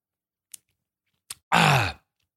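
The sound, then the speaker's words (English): A loud, voiced yawn, a short groaning sound that slides downward in pitch and lasts about half a second, preceded by two faint breathy clicks. “I'm going to yawn real quick.”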